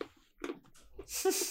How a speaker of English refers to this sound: Okay, I'm eating it. I'm chewing it. It's done.